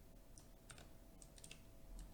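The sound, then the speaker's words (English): Rapid, irregular clicking of keys on a computer keyboard, a steady run of light taps with no talking. “Typing out the whole thing, which is exactly why it's on the list.”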